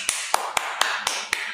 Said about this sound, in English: The bottle's stuck, guys. Or it won't pour. This is a sign. You just have to tap it. Tap it? Yeah.